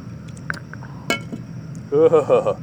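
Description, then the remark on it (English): Someone takes a swig of Jack Daniels whiskey from a glass: a few light clinks, then one sharp clink of glass, followed by a voiced vocal reaction near the end. “Did you take your swig yet?”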